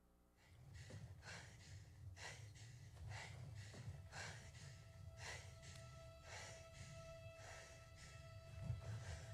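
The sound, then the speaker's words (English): A person breathes heavily while watching a film trailer, a steady series of loud, airy inhales and exhales with a low rumbling undertone and no talking. “A lot of heavy breathing there. Yeah, that was me.”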